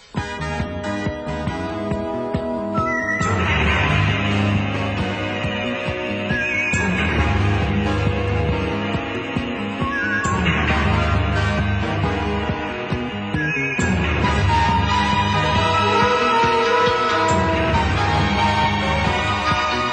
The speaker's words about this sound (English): If we're going to drop Fresno alien here, let me just say, Hawk the Slayer music. It's really good. You should listen to Hawk the Slayer music. Drop it in.